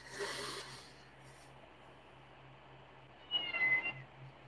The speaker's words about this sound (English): Okay. Kitty. Is that our kitty? No.